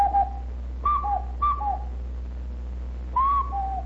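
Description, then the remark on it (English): Someone blows a hand whistle in a cuckoo-like call: four clear two-note phrases, each a higher tone dropping to a lower one, over a steady low hum with no talking. “You notice it does sound like a cuckoo? Listen.”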